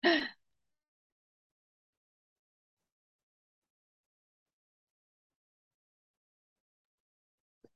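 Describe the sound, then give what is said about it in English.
A single short, rough throat-clearing cough right at the start, fairly loud, followed by several seconds of silence with only a faint tick at the very end. “No, I didn't want to cough did I while you were talking.”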